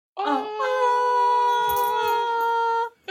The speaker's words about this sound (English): And that just really pissed off my dog when I did that. He did not like that high-pitched one.